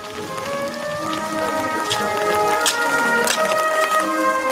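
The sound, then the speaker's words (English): Steady rain falls with a dense, continuous hiss and scattered sharper drop patters, holding an even loudness throughout, while a sustained tonal drone runs faintly underneath. “take it off, sun's in, sun's out, ow, rain.”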